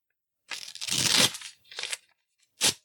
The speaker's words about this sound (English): All right. Now I'm going to rip up this card.